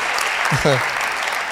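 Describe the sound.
An audience at a church service claps steadily in a dense, continuous wash of applause, with a brief voice calling out partway through.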